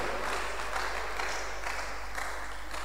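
A crowd applauds steadily, many hands clapping together in a dense, continuous wash of sound that fills the room at moderate loudness without a break.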